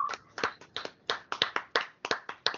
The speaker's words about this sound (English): I think it's time to clap it up.